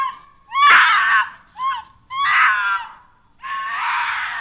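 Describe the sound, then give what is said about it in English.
A series of loud, harsh, eerie screams with a strained, half-human, half-animal quality, coming in four bursts close together, cutting through the evening silence around a campfire among thick pines, with no talking. “as an eerie scream, half-human, half-animal, cuts through the evening silence.”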